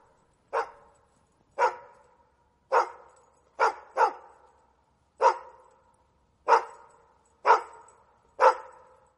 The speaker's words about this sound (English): That was absurdly long. I forgot to turn it off. I think we need a German Shepherd bark on there.